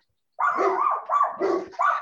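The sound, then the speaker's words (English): Dogs barking loudly in a quick run of about four overlapping barks after a brief silence, with no voices. “Dogs are going off.”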